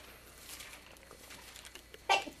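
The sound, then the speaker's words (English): A single sharp sneeze bursts out during a church sermon after a stretch of quiet background hiss, loud and brief with a breathy, noisy edge. “Bless you.”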